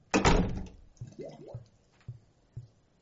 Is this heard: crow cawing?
no